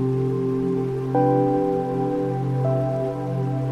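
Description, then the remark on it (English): Steady, continuous rush of falling water, like a waterfall, running beneath sustained, layered musical tones that shift pitch partway through. No one speaks. “And as you step closer to the waterfall, you can feel the water kiss your skin.”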